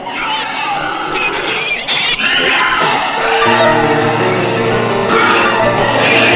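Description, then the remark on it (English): Loud, shrill pig-like squealing from a creature coming out of a host cat's mouth, in the U.S. cut of a film: a continuous warbling screech with harsh overtones that grows steadier and more tonal in its second half, with no speech. “Real quick, when this thing comes out of the host cat's mouth, in the U.S. cut, it's like pig noises, kind of like squealing kind of noises.”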